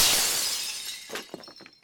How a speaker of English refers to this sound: A loud shattering sound of a window breaks the silence. A primitive Oscar statue hits the ground in front of Porridge, breaking into two.